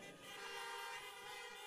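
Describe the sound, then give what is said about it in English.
Several car horns blare together in a loud, continuous chorus, their overlapping tones held steady for the whole moment with no talking, as a church audience honks in response to "He is risen" during an Easter service. “we want you to honk your horns in response to say, "He is risen indeed."”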